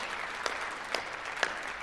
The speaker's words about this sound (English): You can clap. We should definitely clap. Yes.